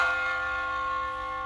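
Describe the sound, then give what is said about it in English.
A single bell strike, rung to start a discussion topic, rings out loud, its bright metallic tone sustaining with rich, steady overtones and slowly decaying over about a second and a half. “But, you know, let's hit this shit with a bell so we could start the topic.”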